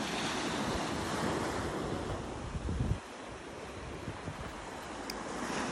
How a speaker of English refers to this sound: I love coming to the beach because I feel the waves bring great energy from far, far and away. I also let go of any unwanted thought, energy or emotion as the waves retreat.